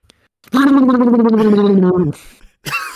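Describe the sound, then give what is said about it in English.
A voice makes a loud, sustained buzzing raspberry imitating a fart, about a second and a half long with a slowly falling pitch, followed by a brief breathy noise. “This is definitely me when I fart.”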